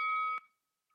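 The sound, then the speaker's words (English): A boxing ring bell gives one sharp, steady metallic ring that cuts off abruptly with a short clack after under half a second, then a faint brief tone follows. No one speaks. “Champ, that's the bell.”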